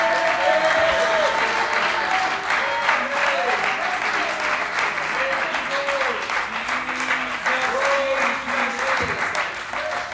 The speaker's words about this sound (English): Let's clap our hands and close our eyes and give God a shout of praise.